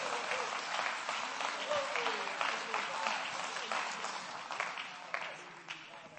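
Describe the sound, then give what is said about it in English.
An audience claps hands to give praise, a dense, sustained burst of applause that holds steady across the whole stretch, with scattered individual claps standing out and faint voices mixed underneath. “Come on and clap your hands again and give him praise.”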